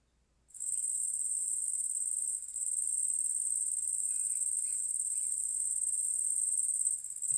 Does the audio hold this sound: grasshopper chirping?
yes